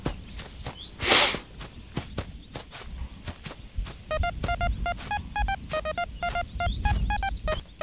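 Footsteps crunch along, then a handheld electronic device made in a lab starts beeping in quick, repeated mid-pitched pulses, signalling a matching signal has been found, over the steady steps, with some chirpy tweets mixed in.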